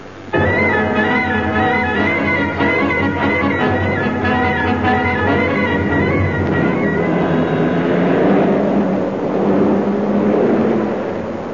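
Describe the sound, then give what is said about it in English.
A loud, cartoonish engine of a huge pyramid driven as a vehicle chugs and whines steadily for several seconds, then turns into a rougher, noisier rumble as it pulls away. No one speaks. “In the huge pyramid with its powerful 2000 BC engine, the avengers of the Scradge hoax fraud were soon seeking out Moriarty and Cripbite Finn”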